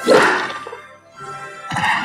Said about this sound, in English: There are many sounds on the street. Hear the only sound of axe.